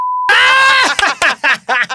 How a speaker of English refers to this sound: But do I know who this is? I'll beep it. Tell me the name and I'll beep it. 3, 2, 1.